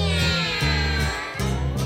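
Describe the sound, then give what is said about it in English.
A person's voice imitates a cat, giving a few drawn-out, whiny meows in quick succession, each sliding up and down in pitch, loud and steady with brief dips between them. “Give me a meow, go.”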